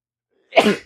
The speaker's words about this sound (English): Let me sneeze real quick.